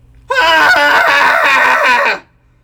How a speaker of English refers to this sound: going to do a cathartic scream together, put all that energy out of our bodies and into the atmosphere and away from us. And so, yeah, find a place where it's safe to scream, and we'll do a three count. We'll scream together. Here we go. In 3, 2, 1.